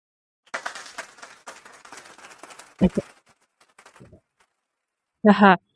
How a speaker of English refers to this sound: I'm not sure if you guys can hear that, but I have a little media studio on the sidebar. I don't know if you can hear that. That was clapping.